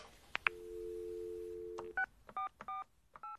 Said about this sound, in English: picked up the phone and called Harry's uncle, Father Barnabas.